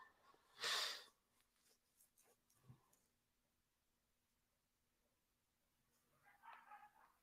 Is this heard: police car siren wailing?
no